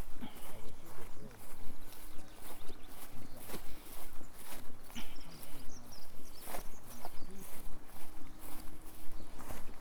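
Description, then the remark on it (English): Steady footsteps walk through a series of fields in Britain, each crunching step landing in an even rhythm over a soft rustling outdoor background. “It's now a long walk through a series of fields.”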